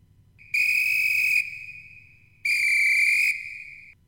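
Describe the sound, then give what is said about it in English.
Two loud, shrill referee whistle blasts, each close to a second long, with a fainter steady tone lingering between them over a low background hum. No one speaks. “And then we'd end the commercial, and then we'd go out with the referee whistle once again, like right here.”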